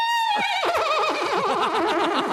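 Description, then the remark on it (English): A sound bite of a horse, bought off the internet, whinnying loudly: a high sharp cry that breaks into a fast quavering warble and slides down in pitch over a couple of seconds, with no voices. “the next song were these sound bites I had bought off the internet, and one was a horse.”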